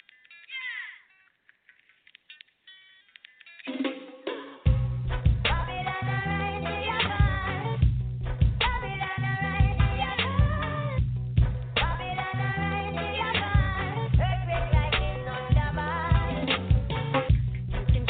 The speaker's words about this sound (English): We're going to take a music moment and come back with the Go and Gnosis.